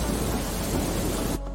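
Heavy rain pours in a dense, steady hiss while a deep, loud rumble of thunder rolls underneath, then the storm sound cuts off abruptly near the end.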